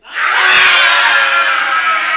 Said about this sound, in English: And a great cry would split the air.